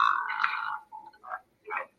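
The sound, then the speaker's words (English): An eerie, raspy croaking growl, loud, drawn out for nearly a second, then two shorter guttural croaks with brief pauses between them, made by a ghostly girl crawling down the stairs. “I do remember the scene where she comes crawling down the stairs making that weird growling sound, freaking out. Yeah, that croaking.”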